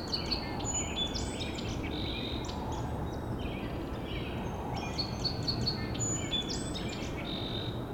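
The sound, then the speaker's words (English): A song sparrow sings repeated bright, trilling phrases every couple of seconds while flying around a tipped-over tree stump, over a steady outdoor rush of background noise. No one speaks. “It's looking like this one song sparrow has won this territory.”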